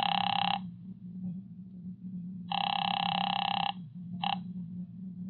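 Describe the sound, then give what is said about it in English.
A phone line rings out on an outgoing call to Hudson Garden Supplies: buzzy, trilling ring tones repeat in bursts separated by pauses, with a steady low hum of line noise running underneath. “I took a chance that maybe the owner or someone lived there and called it.”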